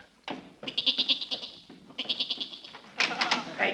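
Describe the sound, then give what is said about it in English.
A goat in a cellar bleats in three wavering, nasal bursts, each a rapid quavering series of pulses, clear with short pauses between calls. “That goat, that goat. I heard him in our cellar.”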